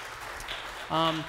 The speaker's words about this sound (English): You can clap for her. Heck yeah.